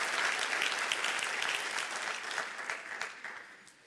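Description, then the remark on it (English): A church audience claps hands during a sermon in a dense, steady burst of applause that stays loud, then gradually thins and fades toward the end, with no voices clearly standing out. “Somebody needs to clap your hands and say, no offense, no offense, no offense.”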